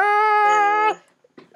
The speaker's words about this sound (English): Oh my god, my cat is stuck. Oh, my cat is stuck.